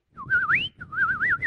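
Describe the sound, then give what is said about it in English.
A person whistles a bird-like call in two quick warbling phrases, the first sweeping upward in pitch, clear with no talking. “No, my nose does not do bird calls.”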